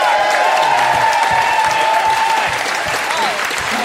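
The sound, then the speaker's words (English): A crowd at an auction event breaks into steady, loud applause for Ben Fordham, dense overlapping claps filling the whole stretch, with faint cheering and a few whoops rising above the clapping. “And a big round of applause for Ben Fordham.”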